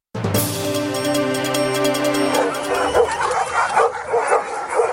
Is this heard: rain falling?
no